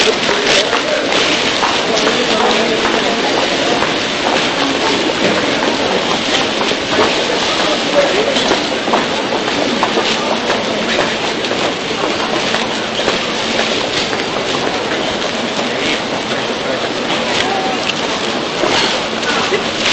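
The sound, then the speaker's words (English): A train runs steadily on its rails, filling the whole stretch with loud, continuous rumbling and roaring, broken by a rapid, rhythmic clatter as the wheels pass over track joints. “There are different forms of trains running through Frankfurt. The main axis is the S-Bahn, which is the fastest of them, and that is the one that does run from the airport.”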